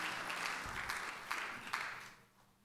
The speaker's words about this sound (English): Give the Lord a good hand clap of praise as you're being seated tonight.